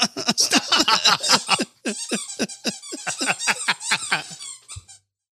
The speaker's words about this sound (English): Thanks, Loki, for making a cameo tonight. Hey. Squeaking along in there like that.